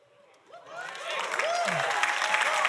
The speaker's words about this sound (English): That's about the right amount of applause. Somewhere between pity and celebration. That's how I feel.